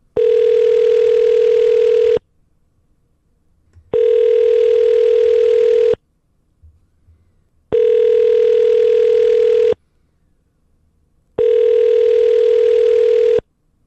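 A telephone rings four times over the line, each loud, steady electronic tone lasting about two seconds, separated by short, even pauses of silence. No one speaks.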